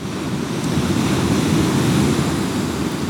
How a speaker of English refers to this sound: Well, will you hang out and listen to the waves while I smoke a bowl? I hope you don't mind.